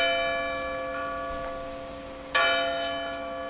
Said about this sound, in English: The church bell tolled with a deep, powerful ring.